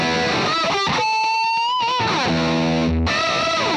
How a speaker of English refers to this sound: It's making the fat rat. We're all probably familiar with the rat pedal, you know, the classic distortion pedal from back in the day. This now has two switches for stock and MOSFET, and another switch for stock and thick.